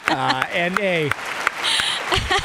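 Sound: round of applause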